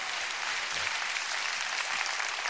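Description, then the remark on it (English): An audience claps together in steady, dense applause, a broad crackling wash of many hands that holds at an even level for the whole stretch with no voices standing out. “That's where we all clap together.”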